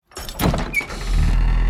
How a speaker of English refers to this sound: The bookcase swung open again, with enough force to hit me in the back and knock me onto the ground as books flew off the shelves and landed around me.